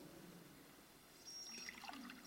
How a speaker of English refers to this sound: I'm just going to pour a glass of water.